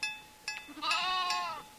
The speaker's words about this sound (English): dozens of Angora goats and churro sheep are crowded into a makeshift corral of pallets, plywood, and fencing. There's not another house in sight.